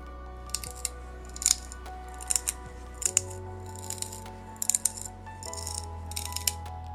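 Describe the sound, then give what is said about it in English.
Bending a piece of tin produces tin cry: crackles and creaks in irregular bursts of sharp, brittle clicks, like faint cereal crackling, over a low steady hum, with no voices. The sound comes from microscopic sheets of crystallized tin sliding past each other. “epithets aside, the reason this happens is because microscopic sheets of crystallized tin are sliding past each other.”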